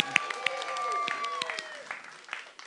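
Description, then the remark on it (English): An audience claps in a steady, scattered patter of sharp hand claps, with voices and a few whoops rising over the applause before it thins out. “That was where you clap.”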